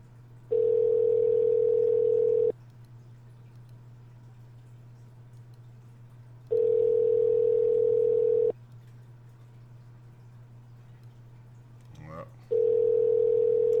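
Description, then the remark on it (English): A telephone ringback tone repeats three times, each steady electronic burst lasting about two seconds with roughly four-second pauses between, over a faint constant low hum, on a call to the developer of the game Tiny Horses Derby Fever. “Oh, it's ringing.”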